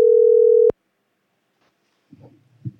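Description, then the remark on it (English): A loud, steady phone dial tone hums for under a second after a call drops because a phone's battery died, then cuts off with a sharp click, leaving silence before faint, muffled voices stir near the end. “Uh-oh, I lost y'all. Chef's phone died.”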